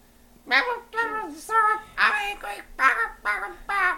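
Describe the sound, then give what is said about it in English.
A voice imitates Stitch choking on a chicken bone, making about seven strained, raspy vocal bursts in a quick, uneven rhythm, fairly loud, with no actual words. “That was Stitch choking on a fucking chicken bone.”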